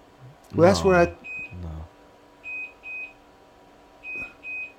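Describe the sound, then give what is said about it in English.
A perimeter alarm at a bunker in South Miami, an early warning that someone is walking toward the retreat, beeps in short, high, steady tones, mostly in quick pairs repeating every second or so, moderately loud, after a brief burst of someone talking at the start. “Is that the perimeter alarm? That's my early warning if someone is walking to my retreat.”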